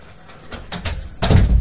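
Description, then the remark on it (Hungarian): The door of a room next to a living room is pushed shut: a few soft creaks and rustles of movement, then a firm, low thud as it closes, with no one talking. “Ez pedig egy ajtócsukódás volt.”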